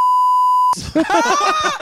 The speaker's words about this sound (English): Basically, I'll tell you what we do. We just beep out whatever it is and we go 5 out of 10. Beep.